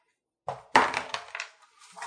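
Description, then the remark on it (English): Dice clatter onto a hard table, a sharp initial hit followed by a quick series of rattling, tumbling bounces that fade out, with no talking; the roll results in a six. “And where's the dice? There's dice.”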